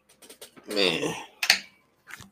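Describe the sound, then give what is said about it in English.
A phone being handled and dropped: a run of light clicks and taps, then a short clattering knock, with a brief vocal sound in between. “I'm going to drop my phone. Hold on.”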